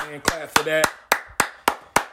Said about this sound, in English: A hand clap for that.